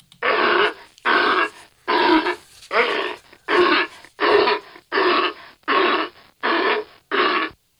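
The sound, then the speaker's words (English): A sea lion barks in a steady series of about ten loud, hoarse, raspy calls, each roughly half a second long with short gaps between, and no talking over them. “That is a sea lion.”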